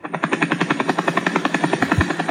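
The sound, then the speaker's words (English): A rapid, rhythmic whirring of the propeller on the head of Bollycopter, a cartoon red ball character flying like a helicopter, steady chopping pulses about ten per second, fairly loud, with no talking. “Bollycopter is a little red guy, a ball with a propeller on his head. He can fly like a helicopter.”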